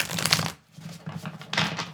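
A tarot deck being shuffled, with papery riffling and slapping in three quick bursts separated by short pauses. No one speaks.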